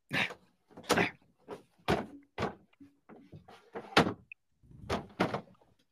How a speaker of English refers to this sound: All right, I made it through the door. Wait, you got through the doggy door? I made it through the door.